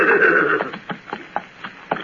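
A horse gives a short neigh, followed by a steady run of clopping hoofbeats, about eight evenly spaced strikes at moderate volume, with no talking.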